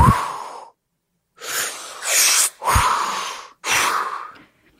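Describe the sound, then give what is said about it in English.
Loud breaths drawn in and pushed out through the mouth while turning the head from center to the left and then over to the right, about five airy rushes in steady alternation with brief pauses between, no talking. “Breathe in through your mouth as you turn your head from center to the left. Suck it in, yeah.”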